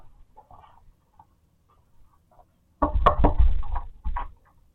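After a few quiet seconds, a burst of heavy knocking on a house's garage door that leads into the kitchen: several loud, rapid thuds and rattles in a cluster, then silence.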